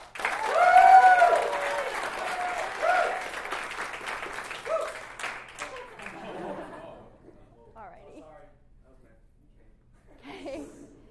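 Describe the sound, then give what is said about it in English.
A burst of applause, loud at first and tapering off over several seconds, mixed with crowd chatter and a little laughter, followed by quieter voices. “And a round of applause.”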